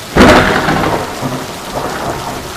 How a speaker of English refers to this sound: Maybe the thunder can be a friend to me right about now. I'm right in the middle of the storm, so there should be another thunderbolt any second now.